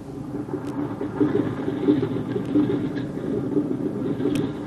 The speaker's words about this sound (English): She said goodbye to Jim as the plane was warming up to take him on the first leg of his journey.